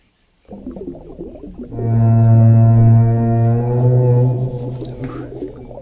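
whale call

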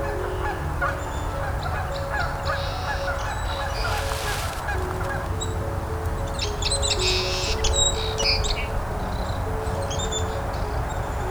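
canada geese honking

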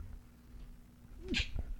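sneeze

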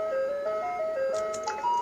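ice cream truck jingle

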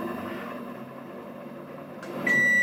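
microwave oven running

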